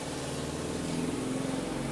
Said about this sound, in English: Damn, y'all car loud as hell.